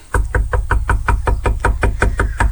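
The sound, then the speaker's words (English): A rapid, steady run of about a dozen loud knocks on a solid wooden front door, heavy with a deep thud to each rap, and no voices. “I'm about to knock on the door.”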